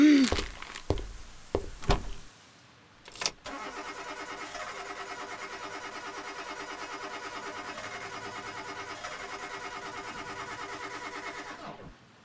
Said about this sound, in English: Your engine just stalled out when you turned the key.